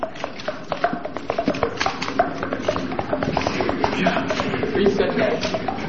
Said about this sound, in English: It has been rumored that your head thumping is electronically synthesized.